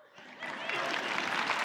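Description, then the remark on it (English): An audience breaks into applause, many hands clapping in a dense, crackling wash that swells after a brief moment and then holds steady and fairly loud to the end. “Okay, last service clapped.”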